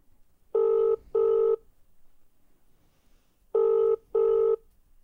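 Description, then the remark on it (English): An outgoing phone call, placed from a phone on a private number, sounds its ringback tone twice, each time as a quick double buzz, with a pause between pairs. The tone is steady and electronic, with faint background noise and no talking. “What if my phone, even though it's on private, has been blocked?”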